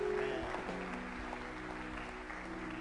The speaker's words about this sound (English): Clap for the technical team.